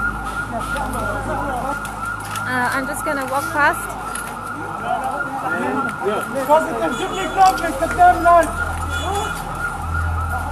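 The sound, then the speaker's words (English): An ambulance siren wails amid street commotion and a traffic jam after an explosion, as the ambulance carries an injured person away from the scene in the Jemese neighborhood near the port, rising and falling over a steady background rumble while a person speaks throughout. “Someone is being transported by an ambulance away from the scene.”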